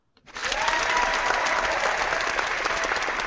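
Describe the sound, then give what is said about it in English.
A burst of applause starts almost immediately and holds steady, dense clapping from a sizable crowd filling the space at a fairly loud, even level for a few seconds. “Well, the crowd certainly agrees with that.”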